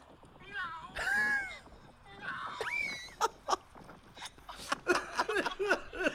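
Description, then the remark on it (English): A person imitates a cat, letting out a couple of drawn-out, wavering meows followed by a run of quicker, choppy meow-like yelps, fairly loud. “Listen to the meow. Here it is.”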